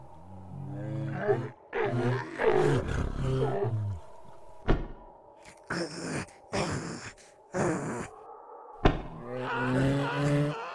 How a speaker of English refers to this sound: That's a miniature giant space rabbit fighting off the walrus bears.